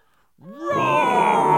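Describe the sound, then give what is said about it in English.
Voices imitate a lion's roar: a rising growl that swells into a loud, sustained, raspy roar held for over a second. “that was an incredible lion roar.”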